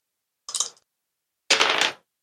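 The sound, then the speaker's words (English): A gunshot sound effect: two loud bursts, a short crack followed a second later by a longer, harsher blast, heard alone without any talking. “Loud gunshot.”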